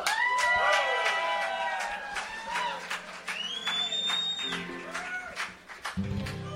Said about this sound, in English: So y'all give a big round of applause for a fellow, like I said, he's come a long way to be here,